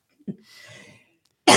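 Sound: coughing fit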